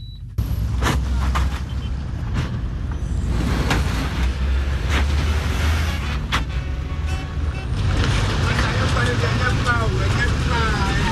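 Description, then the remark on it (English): A car rumbles along a pothole-riddled road in Ghana with a steady low roar, jolted by repeated dull thuds and knocks at irregular intervals as it bumps over the potholes. “A thudding sound of pothole symphony.”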